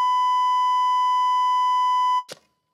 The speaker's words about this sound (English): Hit the beep.